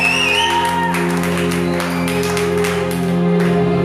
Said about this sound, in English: Why don't you clap your hands and give God praise?